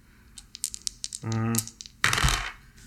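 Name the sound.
dice rolling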